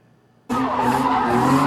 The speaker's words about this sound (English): Oh yeah, these takeovers they're doing. Cars doing donuts.